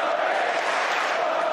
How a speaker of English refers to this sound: The crowd continue to roar your name, Cam Norrie.